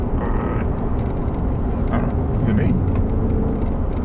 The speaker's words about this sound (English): Oh, I think it's a truck way up there. Oh, or maybe. Or the motorcycle that just went by. All I can hear is brrr.